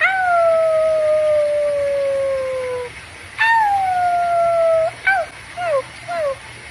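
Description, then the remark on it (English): A woman howls like a dog in her yard: two long, wavering howls that slowly slide downward, followed by three short yelping howls, with no other sounds around. “Here's a woman howling in her yard.”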